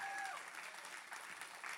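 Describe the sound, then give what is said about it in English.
A large audience at City Hills Church claps steadily together, a dense wash of applause at a moderate, even level, with faint voices mixed in. “Come on, you ought to clap louder than that.”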